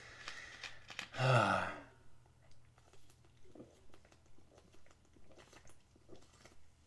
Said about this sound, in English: So, sorry, let me take a sip of Coke,